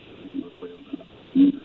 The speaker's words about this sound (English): I hear somebody breathing.